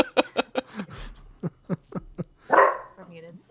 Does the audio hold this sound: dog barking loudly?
yes